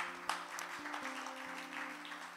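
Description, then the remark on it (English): A church audience applauds in a steady wash of clapping, while sustained keyboard chords hum underneath. “Come on, give me a round of applause.”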